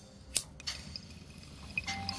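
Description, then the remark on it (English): Faint, continuous watery bubbling from a bong hit, a low gurgling texture broken by a few soft clicks and pops, with no voices. “So, let's take this last bong hit.”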